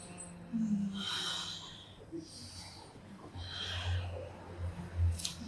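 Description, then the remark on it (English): Slow, deep breaths drawn in and pushed out during a guided breathing exercise, the spine curving on the exhales, with several audible airy inhales and exhales in steady succession, fairly soft, with no talking. “Inhaling, breathing up the body into the expansion of your open heart. Exhaling, curving the spine, breathing the energy back down.”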